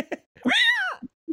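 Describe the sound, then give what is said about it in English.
A person gives one drawn-out imitation of a cat's meow, its pitch rising and then falling, with a few short vocal noises just before and after. “I love cats.”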